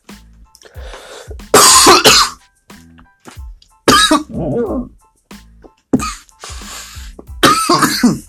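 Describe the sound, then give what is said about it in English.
Several loud coughs come in harsh bursts, mixed with raspy throat clearing and short pauses between fits. No one speaks. “Excuse my coughing. I can't help that.”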